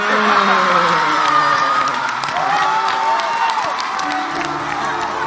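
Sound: crowd clapping and cheering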